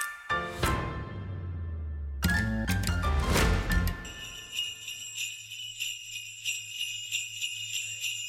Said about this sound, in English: Oh, what's that noise, Carling? Is it sleigh bells I hear?